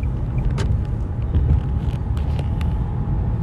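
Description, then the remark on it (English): A deep, steady engine rumble of a line of heavy trucks in traffic fills the scene, loud, with scattered clanks and hisses over the continuous low drone. “What y'all expect people to do in traffic?”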